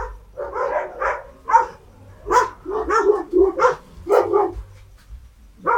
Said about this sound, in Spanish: Hay muchos perros por mi casa. Persiguen a las vacas dos veces al día. Una cuando las vacas suben del arroyo, una cuando bajan del arroyo.